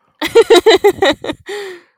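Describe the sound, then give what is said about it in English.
A loud, dramatic gasp from a single voice: a rapid run of sharp breathy bursts, then one drawn-out gasping cry that trails off. “You haven't done a gasp in so long.”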